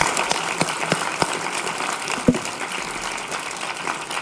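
Steady audience applause, a dense crackle of many hands clapping at even loudness throughout, with a few sharper individual claps standing out and no one speaking.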